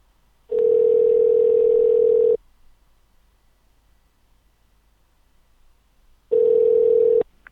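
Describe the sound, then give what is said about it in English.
A steady, loud telephone dial tone after a phone machine got disconnected, humming for about two seconds, cutting to silence, then returning briefly near the end, with no one speaking over it. “my phone machine got disconnected.”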